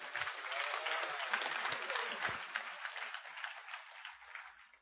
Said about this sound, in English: Thank you. Sit down. Clap for yourselves.